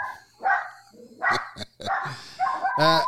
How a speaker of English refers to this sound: I'll ask you one more, and then I'll let you go and deal with the barking dog.